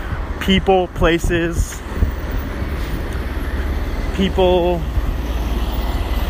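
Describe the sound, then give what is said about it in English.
A steady, loud low rumble of a truck on the street, heard while walking by Pyramido, Greek and Mediterranean Grill, runs through the whole stretch, with brief muffled voices speaking over it near the start and again later. “Oh man, it's a loud truck right now.”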